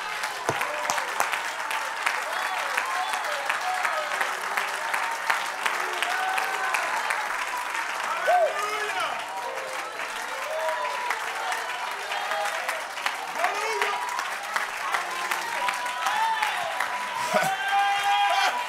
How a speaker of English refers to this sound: Let's take 30 seconds. Clap your hands unto the Lord.